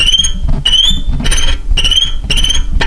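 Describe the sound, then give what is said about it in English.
A violin mimics cricket chirps: shrill, scratchy high-pitched bursts repeat in a steady rhythm, about six pulses in three seconds, played loud with no talking. “So, is this the cricket sound on a violin, or is this a real cricket?”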